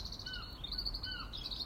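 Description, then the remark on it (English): Birds sing in a garden in a hillside terrace of houses, against a steady, high-pitched chirring backdrop, with a couple of brief whistled notes rising out of the mix. No one speaks. “I'm on my own, just me and the birds again.”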